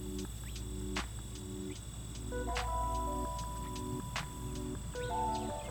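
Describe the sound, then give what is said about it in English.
A continuous bed of high-pitched insect chirping and buzzing, steady and moderately loud, layered over soft rhythmic low pulses that repeat about once a second. “First, the insects.”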